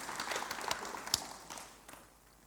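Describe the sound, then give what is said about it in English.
A church audience claps for two people being congratulated, a soft patter of many hands with a few sharper claps standing out, gradually thinning and fading away. “Why don't you give them a clap?”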